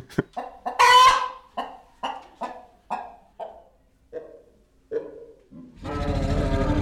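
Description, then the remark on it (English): An imagined T-Rex call, a made-up sound sketch built from a rapid series of chicken-like clucks and a short squawk, ending in a loud, deep, rumbling growl like a crocodile, with no talking. “put all of these pieces together and make an unexplainable version of a T-Rex. Mm-hmm. So I made up this little sonic sketch trying to, like, bring together all these elements.”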